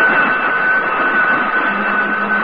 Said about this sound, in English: Shall I sound the alarm? Yes.